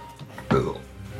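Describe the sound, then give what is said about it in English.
A single short sneeze bursts out sharply and fairly loud, then trails off quickly into a low background murmur. “bless you very much.”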